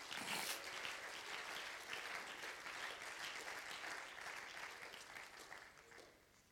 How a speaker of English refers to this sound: In the name of Jesus, why don't we clap our hands to the Lord?